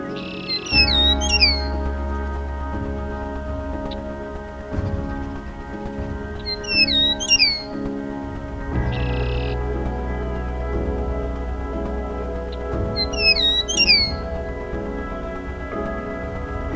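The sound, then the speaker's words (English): A meadowlark sings three bright, fluting phrases of cascading whistles, spaced about six seconds apart and clearly audible over a steady low hum and soft tonal drone. “Few birds announce the arrival of spring louder than a meadowlark.”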